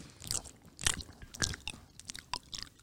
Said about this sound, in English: Hey, that's my job to be chewing on the mic. Are you done yet, dude? No. Do it again.